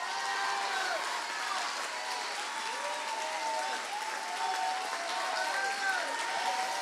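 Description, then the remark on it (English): An audience claps steadily and loudly in praise, with scattered shouts and cheers to God rising over the dense applause, which stays at an even, sustained level for several seconds. “Clap those hands. Give God a mighty shout.”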